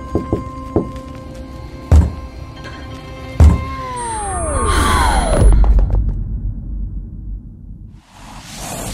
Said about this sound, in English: as her fingers form into a hesitant fist and slowly finish the familiar phrase of the knock onto the wood floor of the apartment.